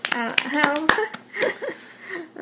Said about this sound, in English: So let's just give a round of applause. This sounds awkward with one person.